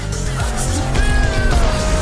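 A car's tires screech in a long, loud skid over a roaring engine as the car goes off a cliff, the high whine shifting pitch for about two seconds with no voices.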